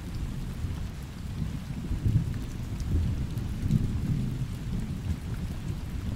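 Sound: rain with thunder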